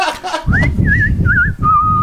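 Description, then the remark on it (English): A person whistles a short, wavering tune of a few sliding notes while walking down a street, ending on a longer held tone, over a steady low background rumble. “Went whistling down the street.”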